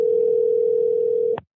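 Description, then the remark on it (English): A phone ringback tone on an outgoing call: one steady, loud electronic tone that holds for over a second before cutting off abruptly with a faint click, and no voices. “He answered the phone.”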